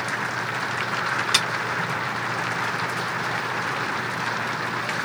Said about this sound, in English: It's raining a little bit for you guys listening to the dogs on your earphones. Don't mind that. It's fine. It's fine. It's just a little rain noise.